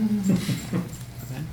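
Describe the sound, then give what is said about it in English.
A small dog whimpers and whines in short, high-pitched bursts, with a murmur of background noise around it. “And that little dog has it too.”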